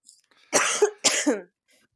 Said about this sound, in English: Sorry, I'm coughing.